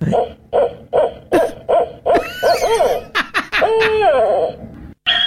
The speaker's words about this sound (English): But I thought, let's have some beautiful owl sounds and the incredible noises that come out of their beaks. This is just incredible.